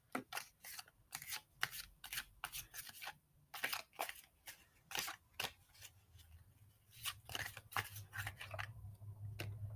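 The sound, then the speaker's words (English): A deck of plant-themed oracle cards is shuffled: a steady run of quick, crisp riffles and flicks with papery slaps, continuing for several seconds with no one speaking. “All right, so we're going to go ahead and we're going to shuffle.”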